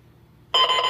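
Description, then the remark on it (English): A Garfield novelty alarm clock goes off: after a brief quiet moment, a loud, steady, bright electronic ringing tone starts abruptly and holds for the rest of the short clip, with no voices. “it's a Garfield clock. Alarm clock.”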